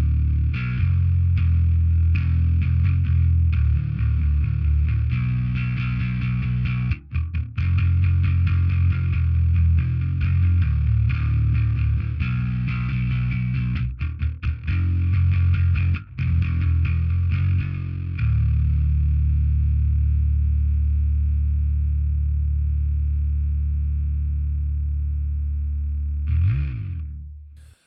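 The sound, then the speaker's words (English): A bass guitar played through an overdrive pedal, with the drive turned up and the volume down, plays a gritty, thick riff with heavy low-end growl and rhythmic plucked notes, then sustains a long distorted tone that fades into a final bending note. “Back over to the overdrive.”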